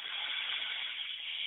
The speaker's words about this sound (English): And so let's take those breaths, breathing in and out through your nose. Take a deep breath in. Let it out through your nose.